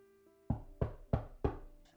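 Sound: knocking on a door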